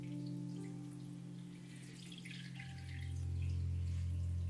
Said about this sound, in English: I then filled the tank with water.